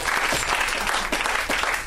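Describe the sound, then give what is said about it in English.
A comedy show crowd applauds comedians Rhea Butcher and Cameron Esposito steadily, a dense wash of many hands clapping at a constant, fairly loud level with no pauses, no voices standing out above it. “Give it up for Rhea. You guys, keep it going for Cameron Esposito.”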